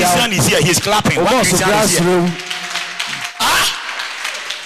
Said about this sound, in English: One Christian is here, he's clapping.